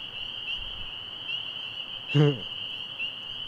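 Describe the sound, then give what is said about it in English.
A dense chorus of peeping frogs forms a steady, shrill, high-pitched trill that never lets up, with a short voice-like sound breaking in briefly near the end. “You don't want to sing too good, the lady frogs will show up.”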